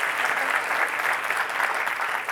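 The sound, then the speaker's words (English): Steady audience applause for the creation of a new federal agency for consumer financial protection fills the whole stretch, a dense wash of many hands clapping at even loudness with no voices rising above it. “But just to help you all here, before you leave and say, I cannot believe that I sat there and applauded for the creation of a new federal agency.”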